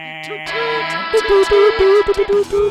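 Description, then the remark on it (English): A horn toots Morse code for "Go Clippers" in a rapid string of short and longer bursts at a steady mid pitch, loud and clipped, following a brief sustained electronic tone. “Toot, toot, toot your horns, baby. Sound the horn, Burbank.”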